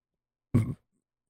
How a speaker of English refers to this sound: Bless me. You burped and said bless me. Oh, excuse me is what I meant to say.